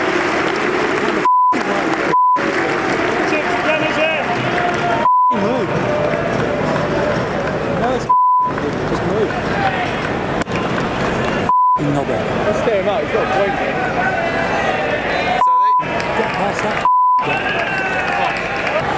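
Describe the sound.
A string of short, sharp censor beeps, about eight, cuts in at irregular moments over steady, noisy stump mic audio from a cricket match as Joss speaks to Vernon, with voices and crowd murmur in the background.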